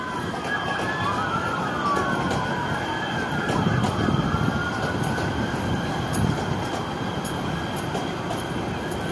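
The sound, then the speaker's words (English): A Metrolink commuter train rumbles past, a loud, steady roar with high metallic squealing tones gliding over it, sustained throughout with no voices. “commercial plane flying over the Metrolink train”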